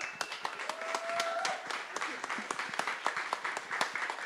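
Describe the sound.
Steady applause from a crowd, dense overlapping claps forming a continuous crackling wash at moderate volume, with a few faint voices and a brief whistle-like tone rising through it.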